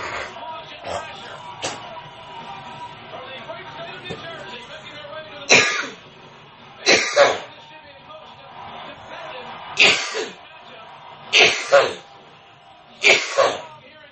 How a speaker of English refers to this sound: I do apologize for my coughing. Now, as of this moment, I am not feeling the greatest.